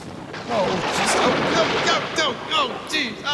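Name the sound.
thunder rumbling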